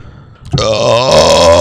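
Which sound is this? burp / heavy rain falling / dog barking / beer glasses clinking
burp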